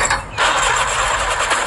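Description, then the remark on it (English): A car engine sputters and churns as it struggles to start, a loud, rough, irregular mechanical grinding that stutters briefly and then continues without catching. “Sound like your engine got the flu, like dog.”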